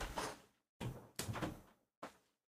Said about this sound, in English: All right, hold on 1 second. I just need to close my door.